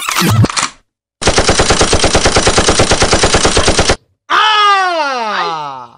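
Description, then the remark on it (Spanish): A sustained burst of rapid machine gun fire, evenly spaced loud shots for about three seconds, preceded by a short noisy hit and followed by a falling, groaning tone. “Acabaron las balas.”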